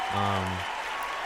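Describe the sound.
A short burst of steady applause celebrating reaching 10,000 Instagram followers, a dense wash of many hands clapping throughout, with a brief low voiced hum briefly under it near the start.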